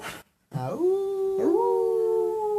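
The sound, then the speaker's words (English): A dog howls after a brief silence, one long rising wail swelling into a second that holds steady and loud through the end, with no talking. “Hey, maybe we should just call this podcast The Howl.”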